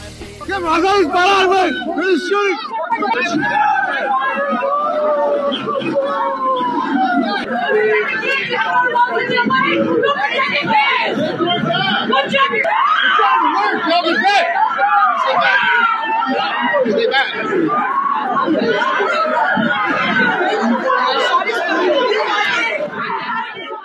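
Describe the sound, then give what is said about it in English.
A crowd of distraught parents in Uvalde, Texas, screaming, crying and pleading with police officers all at once, a dense, loud tangle of wailing voices rising and falling in pitch without letup for the whole stretch. “Ladies and gentlemen, the screams that you just heard, the pleads, the cries, the mothers, that's not the Holocaust.”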